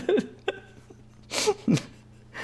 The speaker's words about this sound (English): If you say, oh, like you're gonna have to mute yourself because you're snorting and sniffling over there, aren't you? Come on, man. We want to hear you coughing.